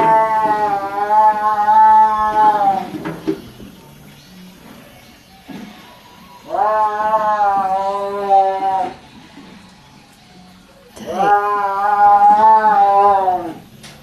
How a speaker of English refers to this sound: And there were rows of cages and tigers pacing back and forth and yowling. Have you ever heard a tiger yowl?